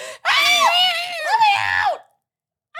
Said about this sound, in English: Okay. You have a great scream. Do you ever use that on stage?